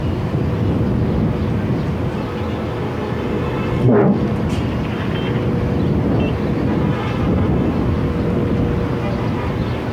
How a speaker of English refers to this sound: I can hear the Apache. The massive explosions now. My friends, we cannot sleep. This is too loud.